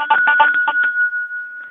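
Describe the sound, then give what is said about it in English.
A larger brass handbell is shaken in about six quick, bright strokes, then its clear, steady ringing tone lingers and slowly fades with no one speaking. “Here's a small brass handbell. And then here's a larger one.”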